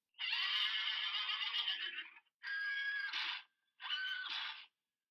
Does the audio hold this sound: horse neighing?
yes